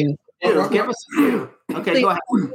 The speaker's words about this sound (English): Wait, say it again, because I didn't hear him. He's coughing.